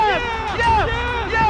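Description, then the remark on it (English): A loud, sustained roar from a big baseball stadium crowd celebrating the Atlanta Braves winning the championship, cheering steadily with shouted voices rising and falling over a dense wall of noise. “Listen to this crowd.”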